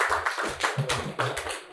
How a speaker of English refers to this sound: Now everybody clap.